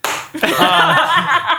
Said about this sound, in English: round of applause from before.